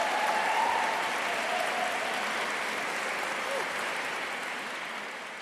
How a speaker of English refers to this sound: It's her first ever visit to London, which is why I think it's even more pressing we give her another enormous round of applause.